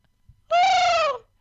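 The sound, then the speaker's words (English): A single loud voice imitates a seagull's call: one sustained, nasal, high-pitched squawk lasting under a second that sags slightly in pitch at the end, with no talking. “Oh, it's like a weird thing. Wait, no, that's seagull.”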